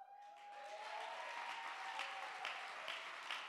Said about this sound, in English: Let's clap our hands.